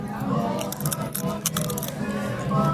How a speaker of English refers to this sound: You got to hear the crunch in this chip, right?